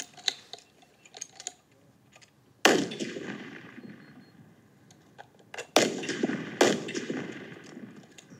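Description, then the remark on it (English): Three loud rifle shots, fired by a shooter on his first day with the rifle who has put fewer than 60 rounds through it, ring out at irregular intervals, each a sharp crack followed by a long rumbling decay, with a few faint clicks and taps before the first shot. “How many rounds has this guy shot through this rifle so far?”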